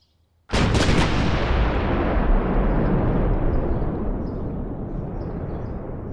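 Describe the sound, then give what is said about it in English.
Repeated explosions in Post, Texas: a sudden, loud blast hits, followed quickly by a couple more sharp bursts, then a heavy, rumbling roar lingers and slowly fades, with no voices present. “Explosion after explosion after explosion.”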